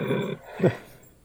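A male puppy lets out a short whiny growl, then a brief higher yelp, fairly loud, with quiet afterward.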